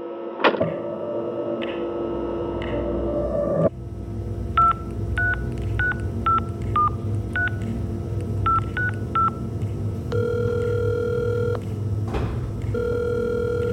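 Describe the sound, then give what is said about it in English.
At the FBI, a phone number is punched in as a quick run of about ten short, steady touch-tone beeps in uneven bursts, followed by a long, even ringing tone over a low background hum. “Can I use the phone?”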